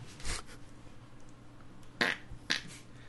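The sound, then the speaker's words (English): Three short fart sounds: a low, blurty one near the start, then two sharper, brassier pops close together toward the end, with quiet in between and no talking. “Why does Dracula come back and all of a sudden it's all farts?”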